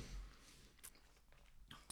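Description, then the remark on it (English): Someone crunches hard candy between their teeth, chewing it fast, a few sharp, crisp cracks spaced irregularly over a quiet background, fairly soft overall. “I'm going to chew this really fast.”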